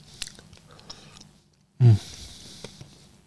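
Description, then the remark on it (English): Wet chewing of a sticky sugary pastry, eaten with the tongue rather than the teeth, with soft smacking and squelching mouth sounds, a brief pause, then one louder low thud before the chewing resumes. No one speaks. “I'm eating with my tongue, not my teeth, because it's too sticky.”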